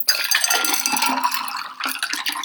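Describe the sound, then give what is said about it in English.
A cocktail is poured from an opened shaker into a glass: liquid splashes steadily for a couple of seconds, a bright pouring sound with some clinking, thinning briefly before a final gush as the whole drink goes in. “Grab your glass, open up the shaker all the way, and you're gonna pour the whole thing in.”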